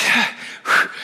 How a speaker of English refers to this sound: am I like really windy right now? I'm breathing a lot more than I usually do.